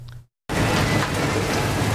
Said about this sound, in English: Streaky pork cutlets sizzle on the plate before going on a charcoal grill and then getting finished off with a blowtorch until lightly caramelized.